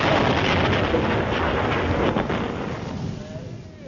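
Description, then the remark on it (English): A loud explosion sound effect, a blast that throws a small black box up into the air: a dense, roaring blast of noise that rumbles on for a few seconds, then gradually fades and thins out toward the end. “the explosion blew Rommel's small black box up in the air”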